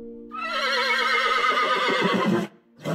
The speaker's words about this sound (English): Yeah, horses. It was their strong shoulders and backs that actually propelled these innovations in the first place.